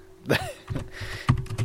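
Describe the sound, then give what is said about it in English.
Several sharp clicks of computer keyboard keys being struck in an irregular rhythm, a handful of crisp taps with brief pauses between them, over a low background hum. “Just can totally hear you hitting the keys.”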